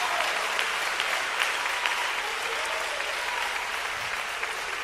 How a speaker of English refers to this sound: Clap your hands and shout unto God with a voice of triumph.